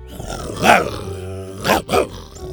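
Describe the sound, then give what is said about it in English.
A deep, rumbling growl from Buck the dinosaur comes in three close bursts, one swell followed by two quicker snarls, loud with no talking. “Then, with a growl, Buck nodded to the next stone.”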